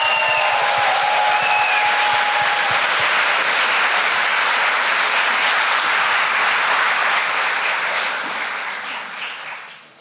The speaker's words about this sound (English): I want one loud round of applause for the kids and youth, and then I'm gonna run back to them.